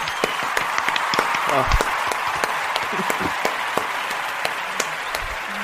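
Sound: round of applause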